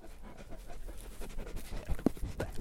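A sheep-guarding dog with a long white coat pants rapidly and noisily right up against the microphone, nearly biting it, breathy rhythmic huffs with a few sharper snuffles and thumps near the end, no talking.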